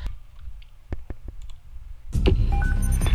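telephone number being dialed

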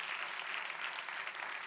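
audience clapping

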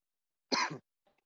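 coughing

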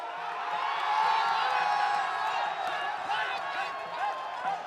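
stadium crowd cheering

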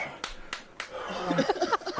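hand slapping a thigh

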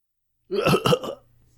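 cough

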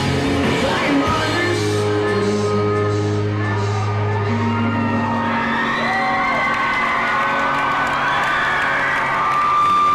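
concert crowd cheering

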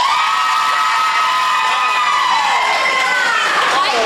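audience applause and cheering

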